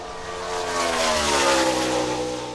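A car engine revs loudly, its droning pitch climbing slightly and then easing back over a couple of seconds, with no voices.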